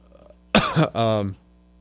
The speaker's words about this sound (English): You need to go get some water? I can't stop coughing, man.